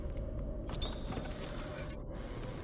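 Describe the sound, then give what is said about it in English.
A door marked 'Captain's Place' creaks open after a knock with a drawn-out, grinding groan, loud, lasting a few seconds with no one speaking. “Wow, I did not plan that sound effect. It just happened, the door opened, and...”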